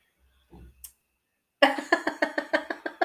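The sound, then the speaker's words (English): A loud, drawn-out burp of garlic sauce eaten at breakfast, rattling in a quick, even series of about nine croaky pulses, preceded by a faint low rumble and a short click. “I'm burping up garlic sauce.”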